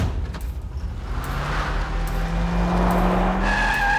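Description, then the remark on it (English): A car engine revs up and accelerates near a mall entrance, its pitch climbing steadily, while tires skid and squeal sharply toward the end. The sound is loud, with no voices. “They eyed Lori near the mall entrance and sped towards her.”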